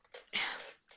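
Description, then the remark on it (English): An old chair creaks as someone shifts their weight to get into a more comfortable position: a short scrape followed by one louder, drawn-out rasping creak that gradually fades, with no talking. “But it's like really old and creaky.”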